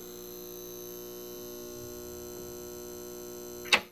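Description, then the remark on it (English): A steady electrical hum drones on without change, layered with faint buzzy overtones, moderately loud, until a sharp click sounds just before the end. “Are parts of our brains actually getting rewired when a hum or some other sound just won't quit?”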